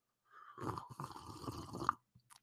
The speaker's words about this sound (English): I really leaned into the slurp on that one.